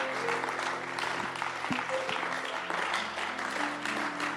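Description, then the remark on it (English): A large crowd claps steadily and densely, a continuous wash of applause welcoming a speaker, with faint voices and a sustained tone underneath. “Your clapping is the clapping of somebody.”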